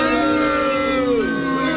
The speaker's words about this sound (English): This is your buzzer.